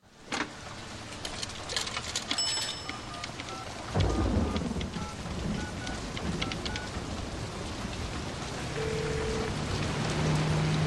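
Steady, heavy rain hisses throughout on a rainy evening, and a deep rolling rumble of thunder swells in partway through and lingers under the downpour. No one speaks.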